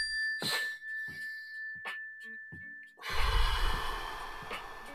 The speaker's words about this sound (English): So why am I holding this? Because I'm going to hit the mindfulness bell right now. When you hear the mindfulness bell, everybody just please take a deep, slow breath.